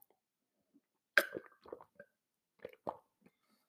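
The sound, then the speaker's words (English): Someone takes a sip of water: a sharp wet click, then a few soft gulping and swallowing sounds spaced out over a few seconds, with nothing else going on. “I'm going to get a sip of water.”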